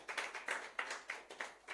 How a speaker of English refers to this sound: Give yourselves a clap offering.